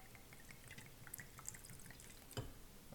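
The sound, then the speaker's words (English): Whiskey pours quietly from a freshly uncorked, brand-new bottle into a glass, a soft, uneven trickle of small splashes and drips, with one sharper clink or splash near the end. No one speaks. “All right, let's get the pour.”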